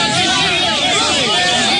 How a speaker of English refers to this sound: Many making their way to an overwhelmed border. This crowd seen trying to push past security gates to enter Poland.